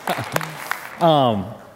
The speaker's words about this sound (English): And like I said, we can clap, keep clapping.